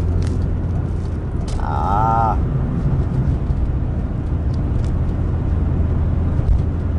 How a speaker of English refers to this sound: Sorry, more traffic. Once again, got on the highway to get off the highway, and that's all right.